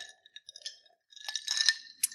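Glasses holding a gin cocktail clink together in a toast, a few bright ringing taps, followed by a quick flurry of clinks and one final chime, with no talking.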